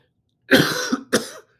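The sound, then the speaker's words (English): Two harsh coughs in quick succession, the first longer and raspier, the second short and sharp, with no talking. “I'm just coughing.”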